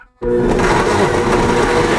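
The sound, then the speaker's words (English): A blender making a smoothie kicks on abruptly after a brief silence and runs at full power, a loud, steady motor whir with a coarse grinding churn as contents blend, no talking. “Anyways, let's make this. Let's smoothie it up.”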